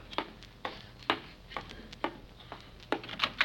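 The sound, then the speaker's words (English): Movers from the Beacon's Van and Storage Company knock at the front door: a series of sharp, moderately loud raps at a steady pace, bunching into quicker knocks at the end. No one speaks. “Uh-oh, the front door again.”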